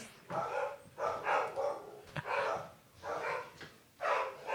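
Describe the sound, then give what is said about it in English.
Dogs barking in a steady series of loud, overlapping barks, several in quick succession over a few seconds, with no talking over them. “He's going to get the dogs. Going to settle down the dogs.”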